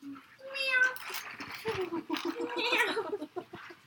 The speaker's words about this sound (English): Meow.